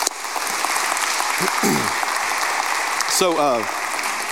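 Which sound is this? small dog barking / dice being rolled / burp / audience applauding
audience applauding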